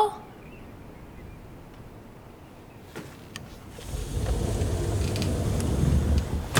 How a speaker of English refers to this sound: Back door closed.